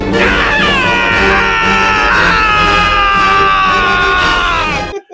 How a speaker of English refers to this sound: He's a sane person. That's why he's screaming at the top of his lungs right now. He is just completely lost it.